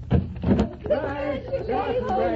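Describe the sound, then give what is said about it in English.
The door of a top-floor apartment 12 floors up opens with two quick clunks of the latch and handle as a woman lets people in from the elevator, followed right away by voices talking over it. “For as you step from the elevator and she opens the door to let you in...”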